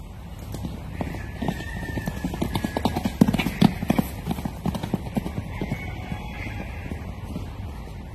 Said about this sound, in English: The thing about Kaapsehoop, apart from the rocks that people say have magic qualities, are the wild horses.